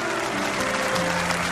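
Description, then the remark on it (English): A crowd claps steadily, a dense, even wash of applause at a constant loudness, with a faint tonal hum running underneath and no voices standing out. “Thank you for applauding an agreement.”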